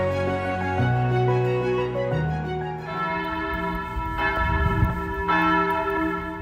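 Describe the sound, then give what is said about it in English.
A peal of church bells in Hingham Center, rung by volunteers pulling ropes, rings out loudly, several bells struck one after another at different pitches, their resonant tones overlapping and lingering in a steady, rolling sequence with no voices. “Well, I live in Hingham Center, and I could always hear the bells ringing, and I always wanted to ring them.”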